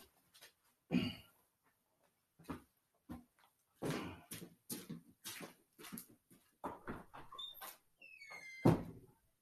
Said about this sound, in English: So I'm just going to go make sure and double check, make sure all my doors are all secured tight. It'll only take 2 seconds.